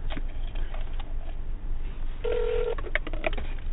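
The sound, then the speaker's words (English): A phone call to a cell phone rings through a muffled, noisy handset connection, with a sustained ringing tone followed by a few short beeps before voicemail picks up, and no one speaking. “Sometimes, but I called him 3 times, so I figured he would answer by now.”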